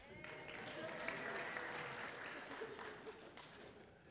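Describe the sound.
A crowd claps together in a dense, steady burst of applause lasting about four seconds, fairly loud throughout, with faint voices mixed underneath.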